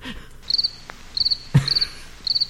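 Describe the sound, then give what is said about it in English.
Crickets chirp in four short, evenly spaced bursts of rapid trills, a thin high-pitched sound against quiet background, with a brief dull thump partway through. “Dude, don't cricket me. You've been cricketed.”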